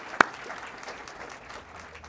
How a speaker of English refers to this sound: Can we get another round of applause for Daniel and Scarlett? Thank you.